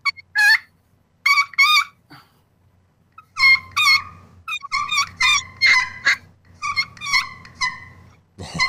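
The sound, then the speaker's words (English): A turkey kee-kee call, imitating a lost young turkey, played on a friction call with the striker tip drawn straight across: series of high, whistling squeaky notes rising in short bursts, followed by rapid clucky yelps, loud and alone with a faint low hum beneath. “I mean, the kiki, what it is, it's a lost young turkey.”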